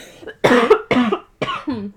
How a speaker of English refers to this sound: Delayed cough from the hit that it comes late for me. If y'all are stoners, you get it.